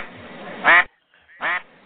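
Two loud, nasal duck quacks ring out about half a second apart, each short and harsh, over a faint background hiss with no talking.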